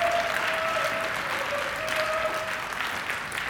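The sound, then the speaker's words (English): A church audience claps steadily throughout as a picture from Easter Sunday is projected during a sermon, a dense, even wash of applause with no breaks, joined by a faint sustained tone in the background. “Yeah, you can clap.”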